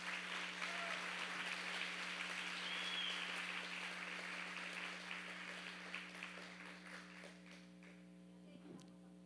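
An audience breaks into strong, dense applause for the Lord, a sustained wash of many hands clapping that gradually thins and fades over the last few seconds, with a steady low hum underneath.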